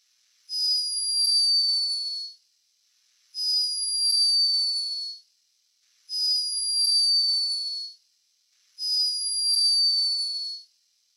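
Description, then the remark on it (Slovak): A hummingbird snoring: four high, thin squeaky whistles, each about two seconds long and sliding slightly downward in pitch, repeating at a steady rhythm with short silences between. No one speaks. “A ináč, keď sme pri vtákoch, počul si už, ako znie kolibrík, keď chrápe?”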